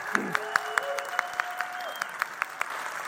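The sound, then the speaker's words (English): A round of applause for a student of ballet at Pittsburgh Ballet Theater: steady, evenly spaced sharp claps rise above a continuous wash of clapping, with a faint sustained tone gliding underneath. No one speaks. “So give Anna a round of applause.”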